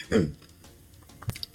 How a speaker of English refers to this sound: You know what's with my cough today?